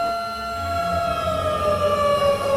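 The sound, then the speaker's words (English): A loud, steady alarm siren wails on sustained tones that slowly slide downward in pitch, with a low rumbling hum beneath and no voices. “The alarms still work.”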